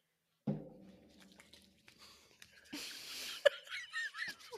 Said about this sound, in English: I just coughed into my hand.